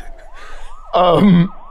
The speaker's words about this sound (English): if Dave hears sirens approaching